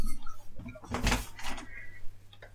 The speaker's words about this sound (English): Are you going to come and sit nicely, or are you going to just sit there and scratch the door and be a pain in the motherfucking ass?